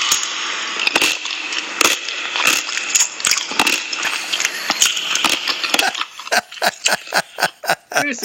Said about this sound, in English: If you listen to that and close your eyes, well, actually, everybody was listening to it already, but listening to it, yeah, that's the sound that they use for a carriage being pulled by horses down a dirt road in any Robin Hood movie.